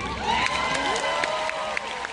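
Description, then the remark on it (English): An audience applauding Hillary Clinton claps steadily while voices cheer and whoop over the top, a dense, continuous wash of applause with rising shouts and no one speaking. “And they applaud.”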